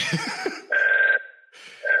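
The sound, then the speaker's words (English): An old-fashioned landline telephone bell rings loudly, a half-second metallic burst with a lingering tone, then starts ringing again, just after a brief, muffled vocal sound. “Unplug that thing. Old school phone.”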